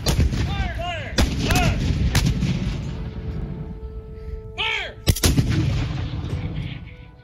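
Heavy artillery fires by section on shouted commands in a staggered series of sharp, loud blasts, each followed by a rolling rumble, with whining, whistling tones rising and falling between the booms.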